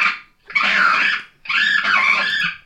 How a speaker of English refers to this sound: Do you want to hear what Friday Raccoon sounds like?